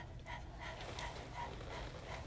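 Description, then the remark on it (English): Quick, rhythmic panting breaths in a steady series of short huffs, a person with tongue out imitating a dog's pant in a fast breathing exercise, with a low background hum and no talking. “So what we're going to try to do is we're going to breathe fast, but stick your tongue out and pant like a dog.”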